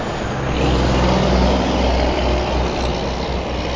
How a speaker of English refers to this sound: Sorry to pause like that. I don't want to talk over the truck that passes by. I'm sure that's pretty loud.